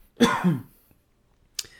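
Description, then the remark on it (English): A single rough cough with a throaty, voiced edge, followed after about a second of quiet by a brief, sharp second burst. No talking. “But, you know, I forgot where I was going with that because I was thinking about something else when I just coughed there.”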